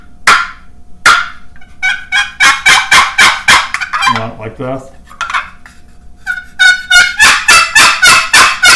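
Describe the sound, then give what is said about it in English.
A wooden box call, run backwards, produces loud, raspy turkey clucks: a couple of sharp single notes, then a quick rhythmic run of clucks, with a man briefly talking midway. “And if you want a cluck,”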